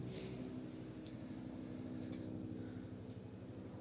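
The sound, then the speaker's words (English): A steady, low droning hum from a helicopter passing overhead in D.C., fairly faint, with a constant rotor-and-engine rumble and no voices; it is analyzing air quality for potential radiation threats around the inauguration, following the Little River Turnpike corridor. “There's a lot of helicopters flying over right now, analyzing air quality for potential radiation threats leading up to and upon the inauguration.”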